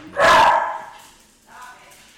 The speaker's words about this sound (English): You hear that? A dog.